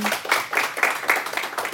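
A crowd claps together in a dense, steady patter of many hands, fairly close and sustained through the whole stretch with no voices rising above it.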